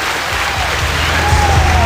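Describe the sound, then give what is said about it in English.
A crowd claps steadily and loudly for award-winning skaters at an awards presentation, a dense, continuous patter of many hands filling the whole stretch with no pause and no voices on top. “Applause to them as well.”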